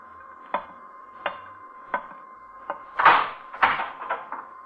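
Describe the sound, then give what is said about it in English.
A door is opened: a few sharp, evenly spaced knocks or clicks, then a louder rattling burst of handle and hinge noise, all over a faint steady hum with no talking. “Earthman, you will rise from your seat and open that door.”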